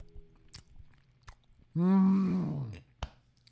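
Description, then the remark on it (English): Chewing of a soft Jaffa cake, with scattered moist clicks and bites, interrupted midway by a long, loud hummed groan of enjoyment before the chewing resumes. “A little chewing, ASMR happening.”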